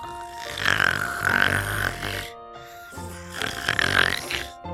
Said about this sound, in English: He snores all of the time. And the sound of his snoring is as loud as a thunderstorm.